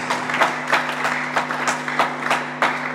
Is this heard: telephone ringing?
no